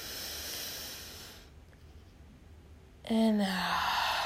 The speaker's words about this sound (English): So what I did here was just breathe in. And out. So essentially, it's breathing in for three breaths. And breathing in for three, breathing out for three.